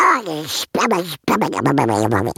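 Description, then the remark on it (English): A person does a raspy, buzzing duck-voice impression, loudly sputtering out quacky garbled babble in three quick bursts with short pauses. “You want a duck? I'll give you a duck.”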